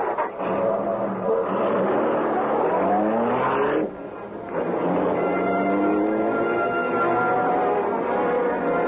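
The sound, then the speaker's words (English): The Black Beauty, the Green Hornet's car, roars at high speed through city streets in the darkness, its engine pitch climbing through gear changes, dropping briefly, then surging again in a steady, loud drone with no voices. “We're moving so fast that police will not have a chance to know this is the Black Beauty.”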